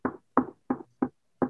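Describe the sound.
Five firm knocks on a bedroom door in a steady, slightly uneven rhythm, each a dull, solid thud at moderate loudness, with silence between them and no voices.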